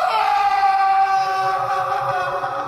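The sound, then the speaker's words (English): A man lets out a long, sustained scream, a loud, steady, high-pitched cry that holds its tone for nearly three seconds before easing off slightly at the end. “That scream, it sounded like the other man in the red top.”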